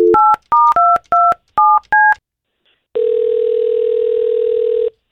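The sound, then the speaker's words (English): Seven quick touch-tone beeps as a phone number is dialed, each a crisp two-note chirp, followed by a steady ringback tone lasting about two seconds, as hosts of the K92.3 radio morning show call a listener. “We're going to try to call her and see if we can't find out what happened, okay?”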